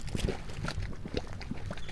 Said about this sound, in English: The mud pots of Yellowstone National Park are acidic springs of hot, muddy water that form in geothermal areas. Various gases from deep within the earth escape through the wet clay mud, causing it to bubble.